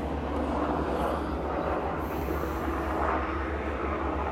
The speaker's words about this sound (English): Sorry, guys. You don't know what the fuck this is. That's an airplane. That's literally a fucking airplane.